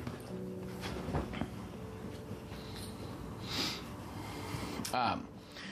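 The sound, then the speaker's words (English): A dog snorts and snuffles, with short bursts of breathy sniffing and a sharp snort near the end, over a steady hum and a voice speaking. “Dog, could you stop? Come here.”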